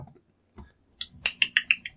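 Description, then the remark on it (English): A voice imitates the Predator creature's clicking call: a rapid, accelerating train of about eight sharp, bright clicks, fairly loud, after a couple of faint low murmurs. “Okay, so I hear the Predator sounds. Can you imitate that?”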